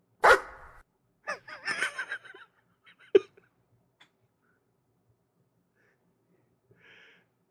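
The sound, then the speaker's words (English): A dog gives a sharp, loud bark, then a quick burst of yelping barks, and one more short bark before the sound fades to near silence. “He's not a robot. He's a dog.”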